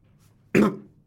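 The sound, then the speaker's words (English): A single sharp cough bursts out after a quiet moment, trailing off briefly, and another cough-like burst begins just as the sound cuts off. “Cough.”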